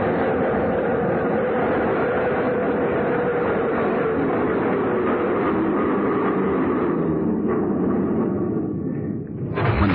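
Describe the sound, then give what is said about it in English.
A subway train rumbles loudly as it pulls into a platform, its motor whine sliding down in pitch as it slows and comes to a halt, followed by a short hiss at the very end. “When the train stopped, he went in through the center door.”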